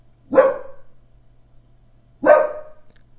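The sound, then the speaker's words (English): Two loud, sharp dog barks about two seconds apart, with a faint low hum underneath and no talking. “Again, my reading a fantasy, triggering something in my dogs.”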